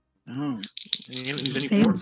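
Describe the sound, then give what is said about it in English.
Dice clatter and rattle in a quick, jittery burst of small clicks as spell damage is rolled in a tabletop game, with a voice murmuring over the noise for about two seconds. “All right, let me roll this damage up.”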